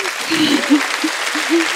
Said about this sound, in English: Thanks. Oh, wait, I'm clapping myself. I just do that instinctively.